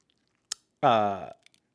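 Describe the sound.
A voice imitates someone chewing hard on a knot: a sharp click, then a strained, voiced grunt of effort lasting about half a second, fairly loud, followed by a couple of small smacking ticks.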